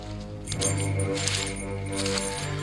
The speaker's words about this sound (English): I brought an audio aid just because, boy, they really foleyed the crap out of those keys.